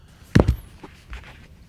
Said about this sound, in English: I just knocked the mic over. I was so surprised.